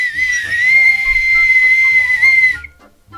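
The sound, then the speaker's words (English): A single loud, shrill whistle blast held steadily for about two and a half seconds, piercing, then cutting off abruptly with faint low rumbling beneath. “No, I have a whistle for her.”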